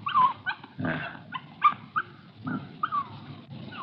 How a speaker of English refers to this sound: It's a little girl. Just a puppy.